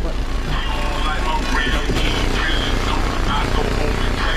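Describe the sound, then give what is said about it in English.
Heavy, booming bass pounds steadily from car subwoofers for several seconds, loud, powerful enough to shake the teeth, with muffled music and voice-like sounds riding on top of the rumble. “So the bass is so powerful, it shakes my teeth.”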